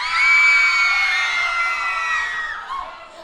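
A group of people screams together on cue, as if terrified, loud and sustained, holding for a few seconds before trailing off raggedly toward the end.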